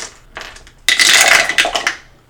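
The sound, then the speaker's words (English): A brief shake of dice, then a loud clattering tumble across a hard tabletop that rattles for about a second and a half before settling, with no one talking. “But I need you to pick up your dice and roll it first.”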